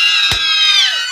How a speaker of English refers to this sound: And you hear even higher shrieks. Yes. That scene of Martin dying, that's actually kind of frightening. Yeah. That last screams he gives out is blood curdling.